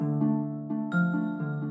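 A large bell, made by the Revere family foundry and donated to the Anglican Church of Singapore in 1843, rings out in a quick series of overlapping strikes, each tone hanging and humming into the next, loud with no voices.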